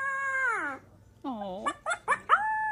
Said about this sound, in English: Let's see. I have an adorable puppy learning how to howl.